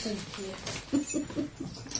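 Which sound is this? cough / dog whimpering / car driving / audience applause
dog whimpering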